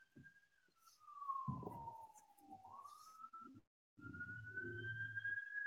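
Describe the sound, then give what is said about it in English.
Wailing fire engine sirens slide down in pitch, then rise again, sustained over low rumbling traffic-like noise, with a brief dropout before the siren returns at a steady high pitch. “Something happened, because I'm hearing some fire engines.”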